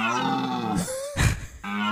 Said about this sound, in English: We're going to listen one more time to this deer scratch an itch.